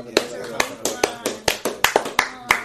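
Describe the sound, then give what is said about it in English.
People clapping in a steady, brisk rhythm, about nine sharp claps in under three seconds, loud and crisp, with faint voices murmuring underneath. “Clap it up.”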